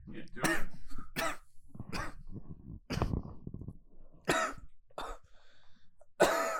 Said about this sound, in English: Coughing your stutter out? What's going on over there? I feel like I just smoked a bowl.